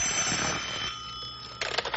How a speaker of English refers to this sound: Phone's ringing.